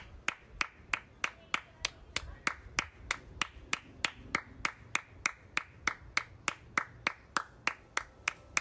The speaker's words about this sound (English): She just claps for like a long time. And you know that Nick Jonas is like filming her doing this, which makes it like so much better. Here's the audio of the clip of Priyanka Chopra Jonas clapping her hands and staring off into nothing.